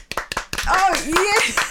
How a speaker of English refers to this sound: I was applauding you. Yes, thank you. I appreciate it. And then applauding us. Because who wouldn't applaud us?